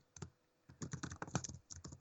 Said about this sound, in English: No, I was just saying, what if that's you typing? Are you typing something on? Oh, yeah, that's me doing the quiz.